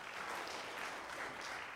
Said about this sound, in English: If you're happy and you know it, clap your hands.